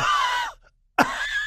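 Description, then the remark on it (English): A voice imitates coughing and choking: two loud, strained, rasping bursts, separated by a brief silence, with the second starting abruptly. “Mother Earth is coughing from the pollution from your SUV.”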